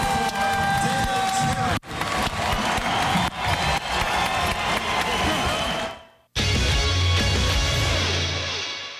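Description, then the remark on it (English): A loud, dense crowd roar with cheering and applause swells continuously, briefly dropping out twice before surging back at full volume, with a broad wash of voices throughout. “In the meantime, enjoy the roar of the crowd.”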